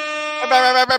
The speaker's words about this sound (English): Hey, I need to hit the air horn for Moses.